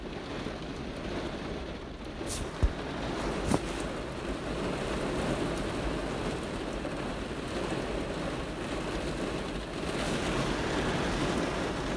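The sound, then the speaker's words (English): Heavy rain pours down in a dense, steady hiss that fills the whole recording, with a couple of sharper splats standing out near the start. No voices are heard. “Oh my god, it's pouring.”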